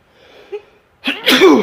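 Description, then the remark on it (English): A faint, breathy inhale builds for about a second, then a single loud sneeze bursts out sharply and trails off. No talking. “I think I have to sneeze.”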